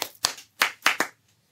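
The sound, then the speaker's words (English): A handful of sharp hand claps, about five, in an uneven rhythm with a quick pair near the end. Each clap is bright and snappy, with no talking over them. “Well, if you're sexy and you know it, clap your hands.”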